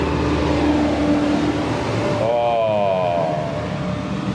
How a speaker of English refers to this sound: If you notice a little bit more reverb on my voice, and particularly if I go a little bit more basso profondo, yeah, within this this cement block bus shelter, here comes a bus.